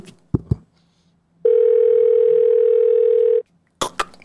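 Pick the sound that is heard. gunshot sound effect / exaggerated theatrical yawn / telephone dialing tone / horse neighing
telephone dialing tone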